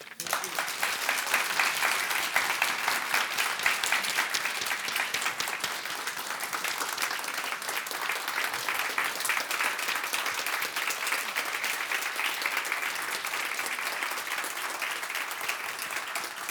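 A standing ovation from a large crowd for Ambassador Gina Abercrombie-Winstanley: sustained, loud applause, a dense steady wash of clapping lasting over fifteen seconds with no letup.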